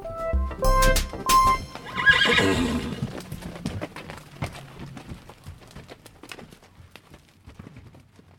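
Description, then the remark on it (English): A horse lets out a loud, shrill whinny, then its hooves clip-clop in a steady rhythm that gradually fades as it moves away. No one speaks. “Make no mistake, they are the quintessential trail horse and an overall favorite as a ranch horse.”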